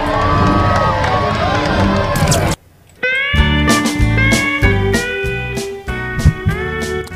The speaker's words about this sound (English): Now, can we get a big cheer for diversity?